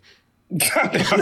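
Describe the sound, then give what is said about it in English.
A single loud sneeze, a short, soft intake of breath followed by an abrupt, forceful burst of noise that stays harsh for about half a second. “God bless you”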